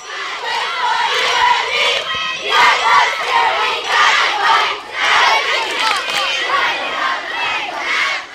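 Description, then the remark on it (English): A group of girls at a camp, including older girls, loudly shouting team cheers and chants together, their voices rising and falling in rhythmic bursts, continuous throughout. “But some of the girls, the older girls, are having a hard time cheering.”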